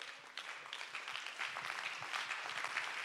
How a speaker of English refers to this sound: Let's all stand to our feet and clap our hands and give him praise.